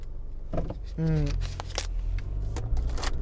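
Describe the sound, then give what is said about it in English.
Plastic water bottle handling: a short squeaky crinkle, then a few quick soft slurps and clicks of someone drinking water, over a low steady hum with no talking. “Let me take a sip out of my water.”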